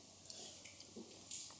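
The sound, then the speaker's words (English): Soft mouth sounds of someone sipping hot French press coffee from a cup, a few quiet wet slurps and a brief airy draw near the end, with no talking. “So, …, pick up the cup. First sip, my friend.”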